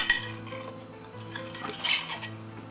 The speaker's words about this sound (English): Place one in my crock pot. And this is the next one. And then take the rest of the sauce and pour it over.